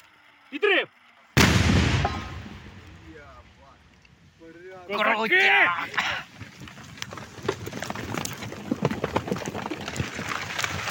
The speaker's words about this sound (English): One is the gap between the explosion and then the earth raining down on these men. The second thing is to hear them laughing, like the fact that they can take some kind of humour in what's happened.